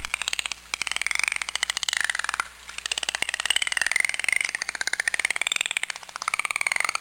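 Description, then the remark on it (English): Dolphins clicking in rapid, steady trains that run almost nonstop, crackling like a fast rattle, with faint high whistles weaving underneath. There is no talking. “The first one I have is an example of dolphins making a clicking sound.”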